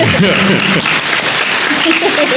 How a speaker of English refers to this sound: Yep. Give the man applause. Yeah.